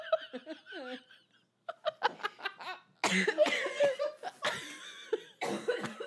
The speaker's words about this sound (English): We gotta edit out all my coughing. I'm sorry.